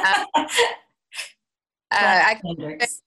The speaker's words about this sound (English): that's … sneezing